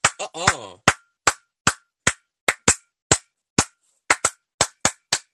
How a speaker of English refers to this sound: Somebody better. I had to put church clap right there.